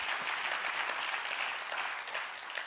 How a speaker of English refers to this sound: If you agree with me on that and you would just come alongside that and say, I believe that, Pastor, would you just clap your hands with me right now? Amen.